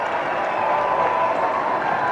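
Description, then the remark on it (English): A large basketball arena crowd roars steadily with scattered clapping and cheering during a game with Fort Lewis leading 83-76 and 1:52 to go, as Mavericks fans are urged to make noise; a dense, continuous wash of noise that stays loud and even throughout without any clear speech. “Make some noise, Mavericks! Crowd still trying to get back into it.”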